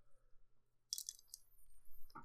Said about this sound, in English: Because, obviously, I'm chewing ice. That's a big part of, let me finish chewing ice.